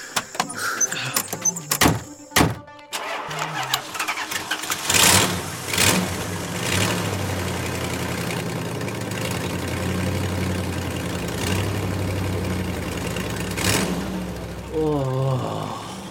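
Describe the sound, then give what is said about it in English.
A couple of solid truck door thunks, then an engine cranks and catches with a brief rev before settling into a steady, rumbling idle that runs to the end. “Shut up and get in the truck.”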